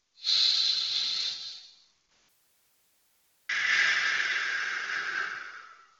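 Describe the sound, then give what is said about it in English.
A big, deep breath: a long, loud airy inhale, a short pause, then an equally long, rushing exhale that slowly fades. No talking. “Do three or four more of these breaths. Big, deep breaths.”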